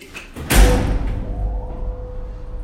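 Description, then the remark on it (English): An old lift's heavy metal gate clangs shut with a single heavy metallic slam, followed by a steady low rumble and faint mechanical hum as the doorless lift starts descending to the basement. “What you can't see is that as we go down in the basement, or to the basement, in the lift, there are no doors to the lift, and the walls are just sliding past us.”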